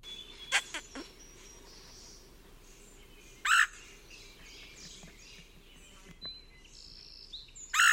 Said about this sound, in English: So during the warmer months, the breeding season, that near constant chattering is substituted for a different call by the red-headed woodpecker, often referred to as the quirr call, since that's what it sounds like as heard here.